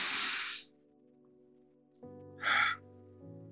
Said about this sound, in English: And so I start by doing some deep breathing, you know, just nice, slow.